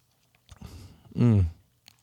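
A quick slurping sip of an alcoholic iced tea drink, a few soft wet mouth noises, then a loud satisfied vocal exhale right after swallowing.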